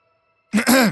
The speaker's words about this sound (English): And as you coughed, you turn around and they both stare at you.